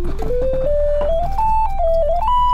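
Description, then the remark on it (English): Electrical tones heard while testing a smart plug work lamp with the Seeing AI recognize light Siri shortcut: a thin, steady whine that climbs in pitch in small steps, dips briefly, then rises again over a low constant hum with a few soft clicks. “You can hear the tones. They're almost non-existent, but now they're turning up.”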